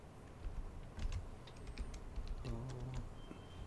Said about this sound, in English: Sorry, typing.